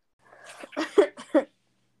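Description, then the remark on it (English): A short fit of coughing: four or five raspy, breathy bursts in quick succession, with a slightly laugh-like rhythm, then silence. No one speaks. “It was a cough.”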